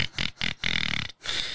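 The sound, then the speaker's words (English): A voice imitates a man's snoring with a run of rough, snorting grunts, four short bursts followed by a longer drawn-out rasp and another snort, in a steady rhythm with no words. “So this man is in front of me and he is snoring and snoring and snoring.”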